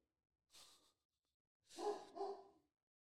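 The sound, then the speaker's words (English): A dog lets out a breathy huff, then two quick, sharp barks, with no talking and quiet between them. “So you probably saw him drive up, so he's barking.”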